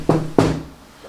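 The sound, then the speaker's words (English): Two firm knocks on a door, a Foley effect, spaced about a quarter second apart, each a dull, resonant thud that rings briefly before fading into quiet. “So I'm pottering around looking at things while you knock on the door then.”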